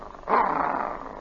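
dog growling

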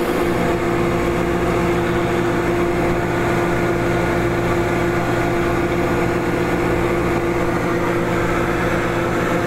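microwave oven running

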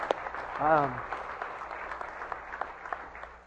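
audience applause and cheering

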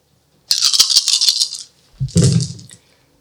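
dice being rolled

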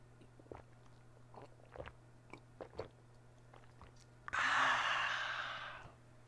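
sipping chamomile tea

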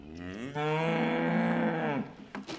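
cattle mooing

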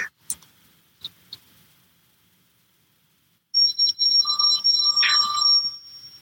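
phone ringing

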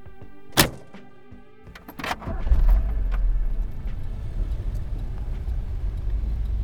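car driving

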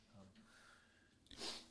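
sneeze

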